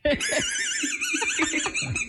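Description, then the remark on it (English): A shrill, wavering squeak from a dog-toy squeaker lodged in a child's esophagus sounds continuously for about two seconds, warbling up and down over low, muffled vocal bursts as he tries to speak. “Every time he goes to talk, it's the squeak.”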